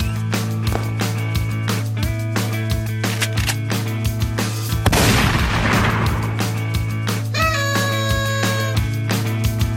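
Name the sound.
gunshot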